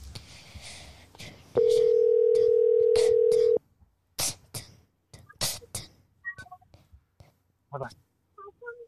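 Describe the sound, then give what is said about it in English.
A steady electronic ringback tone sounds once for about two seconds, loud and clear over faint background talk, followed by quiet and then people speaking. “All right. I hope he picks up.”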